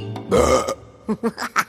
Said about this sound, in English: Burping. What is it and how does it work? Well, burping hinges on our mechanical makeup and the way we ingest our food.